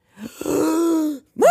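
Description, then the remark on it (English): A drawn-out, voiced gasp of shock, loud, holding for about a second before breaking off, then a second rising exclaimed sound begins right after. “Gasp! What happened to his eyes?”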